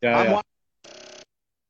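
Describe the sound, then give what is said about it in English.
A telephone rings with an incoming call in two short, tonal bursts separated by a brief pause, the first loud, the second noticeably softer. “Oh, yeah, no, I got a phone call.”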